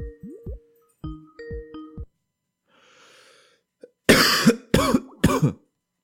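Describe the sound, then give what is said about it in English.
A few electronic beeps and a soft hiss give way to three loud sneezes in quick succession, each a sharp explosive burst of breath, with no talking. “Bless you.”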